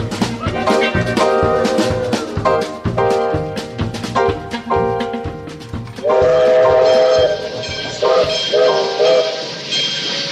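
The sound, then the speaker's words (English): A train rolls along the rails with a steady, rhythmic, loud clatter, and a sustained horn-like tone swells in during the second half. “Say goodbyes to this here train, Banjo, and I'll say hellos to where we are, which is Chocolate Holler if its welcome sign ain't a liar.”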